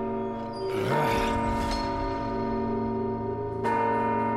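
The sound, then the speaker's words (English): A large bell rings out loudly, struck about three times, each deep, resonant toll overlapping the long humming decay of the one before. No voices are heard. “You open it right when the bell rings, all right?”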